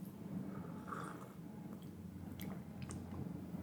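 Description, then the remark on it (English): Soft wet mouth sounds of someone tasting a bark broth made from a recipe book, with quiet smacking and a few sharp clicks over a steady low hum, and no talking. “Let's try this bark broth.”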